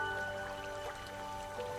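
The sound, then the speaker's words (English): Soft water lapping and trickling with gentle drips, a steady low-level wash that continues throughout without any voices. “Lapping Water”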